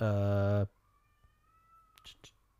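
A single loud, shrill scream from the neighbor children outside cuts off after about half a second, followed by near silence with a faint thin tone and a few soft clicks.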